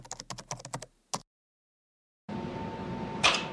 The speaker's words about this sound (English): So, there's no actual sound to the video game itself, just the loud clicking of controllers.